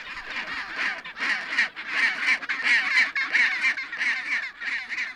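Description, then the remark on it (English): A chinstrap penguin rookery on a steep-cliffed Antarctic island fills the air with harsh, overlapping screeching calls, loud and continuous, with a rough pulsing rhythm and a raspy, mid-to-high pitch. No one speaks. “The whole island echoed with their harsh screeches that could even break the stones.”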